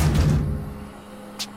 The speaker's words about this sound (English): Then loud slamming on both sides of the glass started.